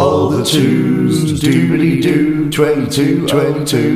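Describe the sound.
A short, upbeat radio station jingle sting: loud sung vocals over bright backing music, with punchy rhythmic accents throughout.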